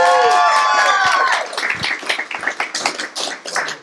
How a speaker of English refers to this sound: Yeah, give a round of applause.